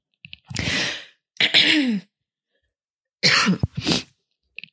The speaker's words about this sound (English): And as I'm like coughing and sniffling